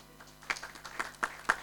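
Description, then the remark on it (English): A few scattered handclaps ring out from a church audience during a service, clapping for a woman who has come to church, sharp and irregular rather than a full round of applause, fairly soft overall with brief gaps between the claps. “Clap for her.”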